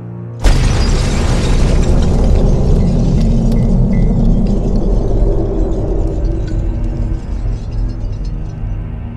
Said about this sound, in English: What was that? The car. It just exploded.